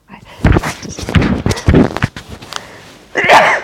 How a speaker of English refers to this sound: I have a very loud sneeze. That one wasn't too bad.